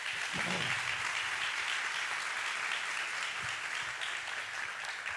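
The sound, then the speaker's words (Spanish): An audience applauds for Jesus: a dense, even wash of many hands clapping at once with no clear individual beats, holding at a constant level throughout. “Dar un aplauso a Jesús.”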